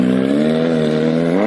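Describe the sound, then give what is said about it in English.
A loud motorcycle engine drones steadily, its pitch holding even before climbing slightly as it revs near the end. No voices are heard. “You hear that? That's a loud motorcycle.”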